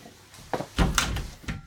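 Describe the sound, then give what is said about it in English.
A door is pushed shut: a light knock, then a fuller thudding close with rattling latch clicks, and a final soft tap as it settles. No one speaks. “Can you shut the door? Shut that door.”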